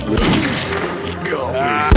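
Two sharp, loud gunshots in an ambush, one at the start and one at the very end, with a dense rumbling wash and wordless, voice-like cries in between.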